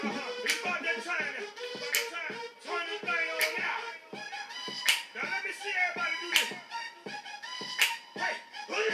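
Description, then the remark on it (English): Crisp finger snaps crack out at a steady, even beat, roughly one every second and a half, layered over a continuous melodic, tonal background with fainter clicks in between. “Snap your fingers.”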